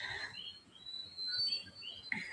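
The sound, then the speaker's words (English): A faint outdoor chorus of frogs croaking with birds calling over it, thin high whistles and chirps layered on a soft, steady background, continuous with no one talking. “Yeah, that's frogs and birds.”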